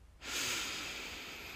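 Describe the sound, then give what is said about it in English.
A single long, steady deep exhale, breathed all the way out during a breathing exercise, starts after a brief pause and continues as a breathy, airy rush, fairly loud, with no talking. “And breathe it all the way out. Breathe it all the way out.”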